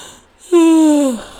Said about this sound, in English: Yawn of the day, guys. Yawn of the day.